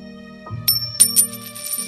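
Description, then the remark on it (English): A coin is flipped to decide whether Team Blue or Team Red goes first in a game, giving a few bright, ringing metallic clinks in quick succession, fairly loud, over a steady, soft tonal background hum with no talking. “Okay, let's flip a coin and see which team gets to go first.”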